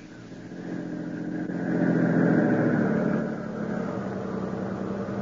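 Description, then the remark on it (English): A car engine drones steadily with a low rumbling hum, swelling louder midway before settling back, as the car drives at night along a rough road full of holes towards a plant, a long way from town. No voices are heard. “I'll do something to him in the car before we even arrive at the plant.”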